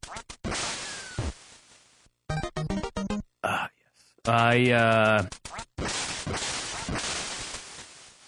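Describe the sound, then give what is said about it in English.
Retro video game duck quacking from the game Duck Hunt, loud, with a strong buzzy quack in the middle, surrounded by harsh noisy bursts and a quick run of clicking, flapping pulses. “I really like the game Duck Hunt, but recently my girlfriend told me that I spend too much time playing Duck Hunt.”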